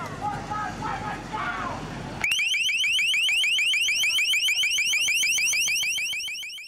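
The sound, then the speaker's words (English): Murmuring crowd noise with voices at protests at the G20 summit in Pittsburgh, then the Pittsburgh police department's LRAD sound cannon abruptly blares a piercing, high-pitched warble: rapid, evenly repeated rising chirps, loud and unbroken until the end. “Protests occurred at the G20 summit in Pittsburgh, and the city's police department put their sound cannon to use, as you can hear in this recording shared on YouTube by the Glass Bead Collective.”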